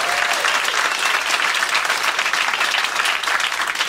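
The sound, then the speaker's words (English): Sustained audience applause for a group of musicians at a holiday-season show, after a medley of Christmas tunes, a dense steady wash of many hands clapping at an even loudness throughout, with no speech over it. “And this, how about a round of applause for this incredible group of musicians?”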